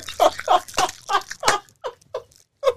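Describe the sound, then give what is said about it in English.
Wet chewing of food, a quick irregular series of smacking, crunchy bites that fade and return several times, with no talking over it. “She's like, I'm not a fan of the chewing.”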